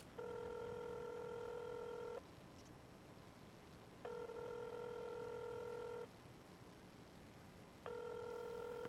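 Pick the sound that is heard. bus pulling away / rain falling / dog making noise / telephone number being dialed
telephone number being dialed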